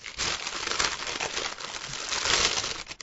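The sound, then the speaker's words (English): A paper bag, taken from a pocket, crinkles and rustles steadily as it's handled and opened, a dense, crackly scrunching sound lasting a few seconds with no talking. “I have a paper bag in my pocket, actually, which is here.”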